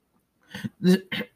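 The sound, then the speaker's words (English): Three quick coughs in a row from a person who swallowed a drink of water down the wrong pipe, the first softer and the last two harsher and louder, with a slightly strained, throaty quality and no talking. “I've been coughing a lot for the past few minutes, not because of coronavirus, but because I had a drink of water and I swallowed it down the wrong pipe, which I do quite often.”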